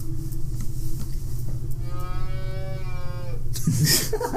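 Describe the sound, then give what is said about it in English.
A single long, wailing cow moo rises out of a steady low rumble and holds for over a second before fading, followed by a brief, bright clatter at the end. “You waken to the sound of this wailing moo.”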